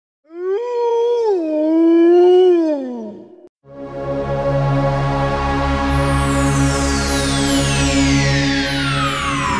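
A wolf lets out a single long, wavering howl lasting about three seconds, loud. After a brief pause, a sustained droning tone follows with a high whistling sweep sliding downward.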